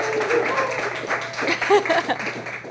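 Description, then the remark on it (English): An in-person audience at a Startup Grind entrepreneurship event applauds steadily, a dense wash of many overlapping claps lasting about three seconds at an even, fairly loud level, with some voices and cheers mixed into the clapping. “Can I get a round of applause for those of you who are excited to be here in person?”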